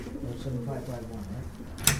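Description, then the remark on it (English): Racing pigeons coo steadily in a low, warbling murmur at the Wallingford Clubhouse, a big red barn, as club members get the birds ready the night before Saturday's race, with a sharp clatter like a latch or drawer near the end. “and all the club's other pigeon racers are getting the birds ready.”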